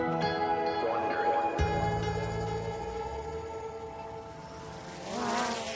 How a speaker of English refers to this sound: A small drone is flying over a sunny Brooklyn street. The middle of the day in New York City is usually loud and bustling, but not these days. In this new normal we're living in, Brooklyn is eerily quiet.